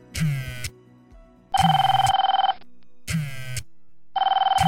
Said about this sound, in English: Just then, my phone rang.